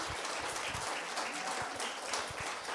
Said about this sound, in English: Give her a massive round of applause as she comes to share.